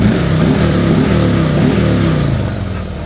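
A Harley-Davidson motorcycle engine revving, a loud, continuous throaty rumble whose pitch rises and falls with the throttle before easing slightly at the end. No voices.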